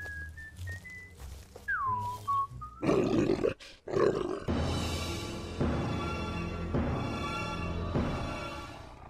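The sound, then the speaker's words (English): A few rising and falling whistles give way to loud, rough growling from Cullen's vicious hound, put outside to guard the fort. The growling swells and surges in several throaty waves, with no talking. “So Cullen put his vicious hound outside to guard the fort.”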